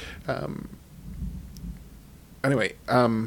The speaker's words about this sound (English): if you can hear that thunder out there, I have quit recording this podcast 4 times to turn off my computer because of thunder, and I just want to finish it.